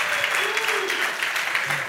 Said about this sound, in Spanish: And if you've been here the past few weeks, denme un aplauso por algo, denme algún crédito.